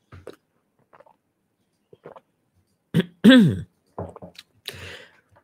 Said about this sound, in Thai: จิบน้ำสักนิดนึงครับ